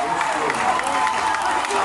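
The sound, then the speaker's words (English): A crowd at a baseball game roars and cheers in the sixth inning as the Pella Christian Eagles escape a dangerous situation. The noise is a steady, dense wash with applause mixed in and no clear pauses across the short stretch. “And you heard the crowd go nuts.”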